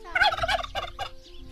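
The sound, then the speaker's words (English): A couple of turkeys on a small farm in the desert gobble in a quick, warbling burst of several rapid calls, loud, tapering off toward the end with a low background hum underneath. “Her conspicuous patch of green is where she farms tilapia fish, and it's also home to fowl, goats, sheep, and a couple of chatty turkeys, which she says she does not slaughter.”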